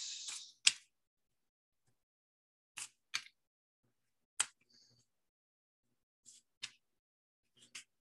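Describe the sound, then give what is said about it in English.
A deck of question cards gets shuffled: a brief papery riffle, then a scattered series of crisp, sharp card snaps and taps separated by quiet pauses, with no one talking. “I'm going to shuffle these.”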